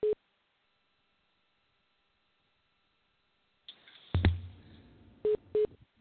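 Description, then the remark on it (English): A phone line on hold gives short, steady mid-pitched beeps: one at the start, then two more in quick succession near the end, with a stretch of muffled rustling and a thump between them. “I hear a beeping yes. sound. Do you hear that? Yeah, I hear that too, yeah.”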